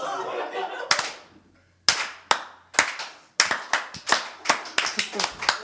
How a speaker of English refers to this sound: Let's give a slow clap to the crowd that came out tonight. Hey. very slow.